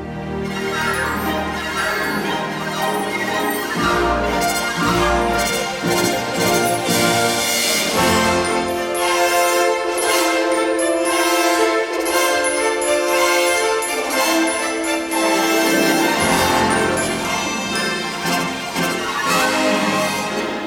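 A full orchestral film score plays loudly and continuously, rich sustained chords with bright, shimmering upper tones; the low end thins out midway before the full ensemble swells back in.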